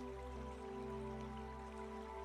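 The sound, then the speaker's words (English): Steady, quiet river water flowing, rushing continuously without a break, accompanied by a soft sustained tonal hum. No one speaks. “And as you approach the river, you can hear the purity of the water flowing through the river as the sound of the river relaxes you more and more.”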